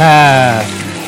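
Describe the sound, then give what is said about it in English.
A drawn-out vocal tone opens, then gives way to a steady crackling sizzle, like food frying in a hot pan, holding moderately loud for the rest of the moment. “Of course, I gotta let the sizzle sizzle. Love that sizzle.”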